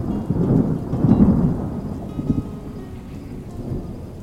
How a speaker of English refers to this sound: And that's something many Arizonans get giddy over. Storms bring the unbearable temperatures down. The accompanying lightning show is always a wonder to see.